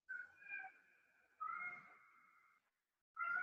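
A cat meows three times in a row: two long, drawn-out tonal calls, then a third starting as it ends. Fairly loud, with short silent gaps and no talking.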